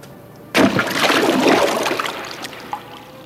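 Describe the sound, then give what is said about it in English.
A sudden heavy splash as a horse leaps from the high battlement of a fort and plunges into a river, followed by a couple of seconds of churning, sloshing water that slowly settles. Loud, with no voices. “When Bidhi Chand lifted the reins, he leaped over the high battlement of the fort and plunged into the river with a great splash.”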